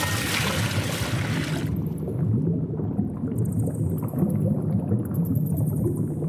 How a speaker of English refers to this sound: After that, nothing would do but that they empty and explore the well immediately. So Ami had to wait trembling while pail after pail of rank water was hauled up and splashed on the soaking ground outside.